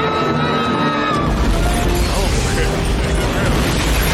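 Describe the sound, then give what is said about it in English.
A loud, booming explosion erupts after a second of tonal movie sound and keeps roaring as a dense, rumbling blast with crackling debris to the end, heavy in the low end. “Now, they blow that motherfucker up.”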